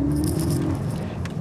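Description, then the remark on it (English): A car passes in traffic, a steady low engine rumble with a faint hum and some rattling road noise, fairly loud and continuous, with no voices. “sorry, traffic, straight A traffic.”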